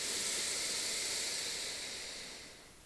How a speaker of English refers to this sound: In through the nose. And out through the mouth. One last breath in through the nose.